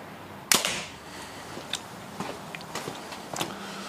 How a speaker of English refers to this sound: if you can just point the camera at the paper, we'll throw some arrows.